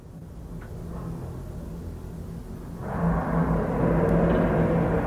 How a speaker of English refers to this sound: There we are. That's what we wanted to hear. The cars going out of the pit lane for the first time. And the whole field pretty much heading out.